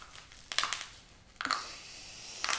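Tissue paper crinkles in soft, irregular bursts, with a rustling flurry, a brief lull, then a louder scrunching burst and one more crackle at the end. No one speaks.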